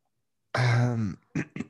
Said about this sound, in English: Me clear my throat.